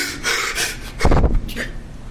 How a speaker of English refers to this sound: gasped for air when he testified in his own defense at the trial the whole nation is watching.